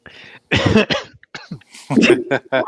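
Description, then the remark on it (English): A few harsh coughs in quick bursts, with short pauses between them, loud, no talking in between. “No, I was actually coughing right there.”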